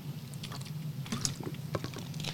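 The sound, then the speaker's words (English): Someone drinking water: scattered soft clicks, sips and faint sloshing over a steady low hum, with no one speaking. “I'm gonna drink some water while you think about who your Chicago Mount Rushmore of coaches is.”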